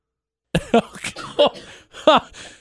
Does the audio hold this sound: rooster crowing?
no